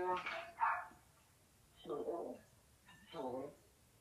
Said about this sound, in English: Oh, boy. I'm sorry. Everybody's happy for you. The dog is excited.